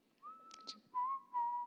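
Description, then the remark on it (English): A person whistles a short, bright melody, with a rising note followed by two sustained, wavering tones and a faint breathy sound between them. “It's a good whistle.”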